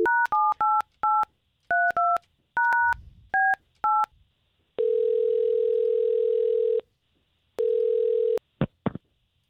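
A rapid series of touch-tone beeps as a number is dialed, followed by two long, steady ringback tones over the line, with no one speaking; a phone call placed by on-air hosts of radio station K92.3.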